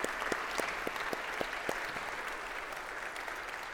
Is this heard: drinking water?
no